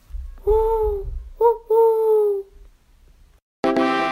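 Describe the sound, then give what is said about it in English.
A young child's voice imitates an owl with three drawn-out, wavering hoots, fairly loud, the last two in quick succession, followed by a brief burst of a different, buzzy sound. “I'm going to do my best owl impression.”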